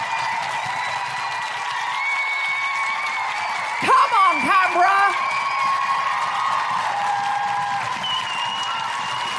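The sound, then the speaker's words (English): A large audience claps and cheers steadily for several seconds to vote for a revolution that burns the patriarchy to the ground, with scattered whoops and a dense wash of applause; midway a single voice shouts excitedly over the noise. “If you would like it to be a revolution that burns the patriarchy to the ground, follow by an orgy, clap now!”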